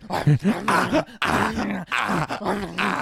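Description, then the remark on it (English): A dog, Mr. Dog, growls and snarls in loud, rough, continuous bursts, rising and falling in pitch with a few brief breaks, as it mauls Big Boss, ripping his stomach open. “Dog, no, stop mauling on Big Boss like that.”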